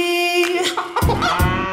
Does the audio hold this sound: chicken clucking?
yes